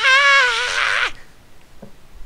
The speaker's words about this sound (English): What the hell was that? I scream of being tortured. Like, oh. It sounds like when the belt comes out.